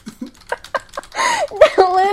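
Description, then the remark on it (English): Several quick, uneven keystrokes clatter on a computer keyboard as someone types a tweet, then a voice takes over for the second half, drowning out the typing. “And you are typing away. I'm typing a tweet about how I got seriously mad at you at the end of this podcast for a moment.”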